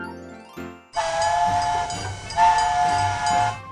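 A toy train sounds two short whistle toots, then lets out a long, steady shrill whistle over a busy rattling chug. Loud, with no voices.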